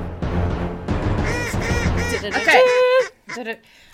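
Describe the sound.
A human voice imitates a duck, letting out a rapid run of loud, nasal quacks, ending with one short final quack and then quiet.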